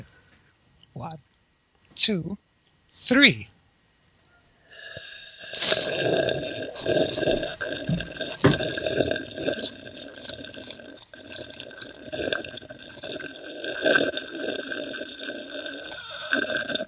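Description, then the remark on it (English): Three short, wet slurps from a cup holding only a little water, then a long, continuous noisy slurping of water with a gurgling, airy edge, fairly loud. “That one was harder because I got less water in my cup, so I can't quite get the right slurpy angle.”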